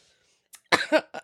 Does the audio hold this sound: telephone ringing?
no